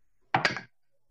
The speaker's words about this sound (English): That was a very clattery noise. I just rolled evil on my alignment dice.